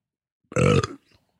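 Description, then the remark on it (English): A single loud, low burp lasting about half a second, with a rough, voiced rumble and a quick fade, followed by silence; the burp comes after drinking a coffee. “Oh, that was a coffee I just had.”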